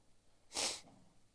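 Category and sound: human body sound, sniffing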